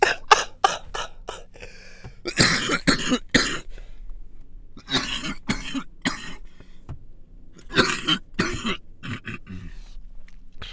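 A person who has had a cough for a month coughs repeatedly in loud bursts, short hacking coughs clustered in several fits with brief pauses between, plus some throat clearing, and no talking.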